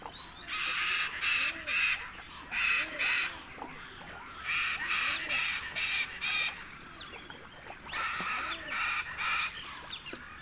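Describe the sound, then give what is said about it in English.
Chestnut-fronted macaws fly overhead, giving harsh, raucous squawks in repeated bursts of several calls, fairly loud, over a steady high-pitched insect drone with no one speaking. “As we leave the howler monkeys behind, chestnut-fronted macaws fly overhead.”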